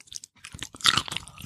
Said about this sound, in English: All right, I'm eating right now, for the listeners, the pickled, what is it? Spicy pickles. Can you crunch it in the, can you make that crunchy sound?